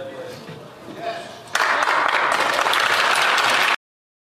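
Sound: parliament members clapping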